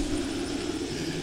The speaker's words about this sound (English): You hear the helicopters? They're coming.